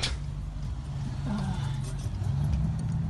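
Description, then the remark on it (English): A police car drives past at low speed without its lights on, its engine a steady low rumble that holds throughout, with no siren. Faint muffled voices sit underneath. “There's another officer without lights on going by right now.”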